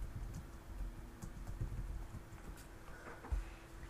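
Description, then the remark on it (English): Soft, rapid keyboard typing of a search for St. Patrick sheep herding, with irregular, fairly quiet clicks over a steady low electrical hum; no one speaks. “I'll see if there's a actual source or just type in St. Patrick sheep herding.”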